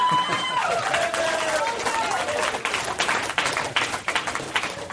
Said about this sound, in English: And so there's the biggest applause break of the show,